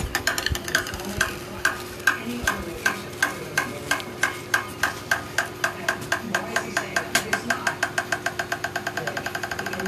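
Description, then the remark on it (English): A golf ball bounces on golf club heads of metallic glass and of steel: a long run of sharp, ringing clicks that come faster and closer together as the bounces shrink, lasting longer on the metallic glass than on the steel, with a faint low hum underneath. “We can see that the ball bounces off the metallic glass surface much longer than of the steel surface, because deformation of amorphous metal is much smaller than that of steel, and most energy is transferred to the ball.”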